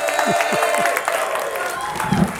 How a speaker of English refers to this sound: Give it a big round of applause for Geek Brother number one,